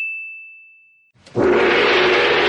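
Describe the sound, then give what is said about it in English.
A bright, pure ding rings out and fades, then a big gong is struck hard, swelling into a loud, sustained crashing shimmer with a deep rumble beneath. No one speaks. “Ah, by the sound of the gong, it must be time for Mystery Movie Moment.”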